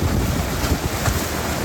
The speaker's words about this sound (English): The water is still, right? Like, there's no waves. There's no wind. That's all you're hearing is just sharks moving the water. Just chopping.